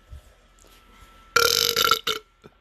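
burp

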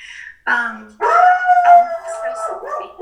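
dog howling

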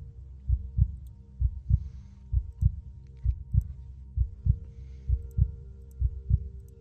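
heartbeat sound effect

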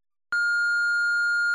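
answering machine message beep

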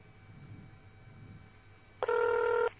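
telephone dialing and ringing

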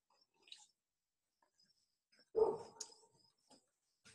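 sipping coffee

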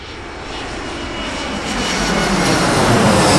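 airplane engine roar

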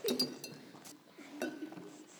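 spoon clinking

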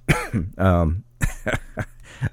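coughing

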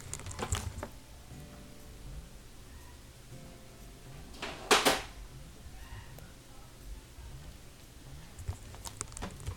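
back door being opened

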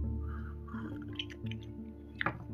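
sipping coffee

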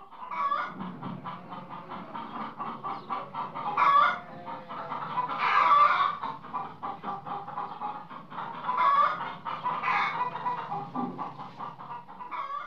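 chickens clucking

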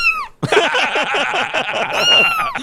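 cat meowing

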